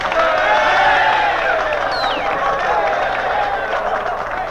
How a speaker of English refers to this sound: Listen to those students applauding your work.